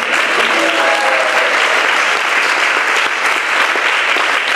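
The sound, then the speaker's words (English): A crowd applauds steadily and loudly for the secretary who arranges appointments with Maharaj, a dense wash of clapping that holds at an even level throughout, with faint voices mixed in briefly near the start. “He has been facilitating your appointments with Maharaj, so another round of applause for him.”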